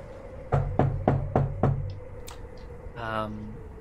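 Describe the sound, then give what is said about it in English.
Five firm knocks on a ship's forecastle door in a quick, even rhythm, fairly loud, followed after a short pause by a brief voiced sound. “Yeah, I guess I'll walk up to the door and give it a knock.”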